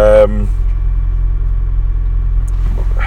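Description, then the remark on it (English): Steady, loud low-pitched rumble of a car engine idling in a parked car in Hull, heard from inside the vehicle while waiting to leave, constant throughout, with a brief voice at the very start and faint talk near the end. “we're sat in Hull in the car waiting to leave.”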